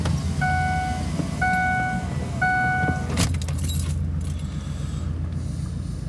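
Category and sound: vehicle, car passing by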